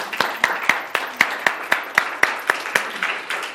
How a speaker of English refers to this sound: could y'all help me applaud them and their efforts?